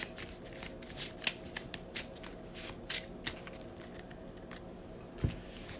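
A deck of cards being shuffled during a card game, a quick run of crisp riffling clicks and flutters with a few sharper snaps, fairly quiet and steady over several seconds.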